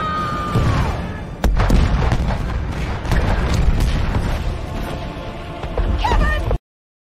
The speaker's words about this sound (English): Let's fire it off one more time. Here we go. Fire the cannons.